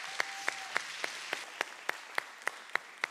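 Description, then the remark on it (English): Congregation applause at a church service one morning, in a steady, even rhythm, about eleven sharp claps in three seconds over a quiet hiss, with no one talking. “y'all give Mary a great big round of applause this morning”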